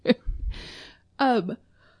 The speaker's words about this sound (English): No yawning. Sorry.